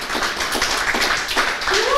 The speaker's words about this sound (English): So could you please first give a round of applause to Mundi, and then...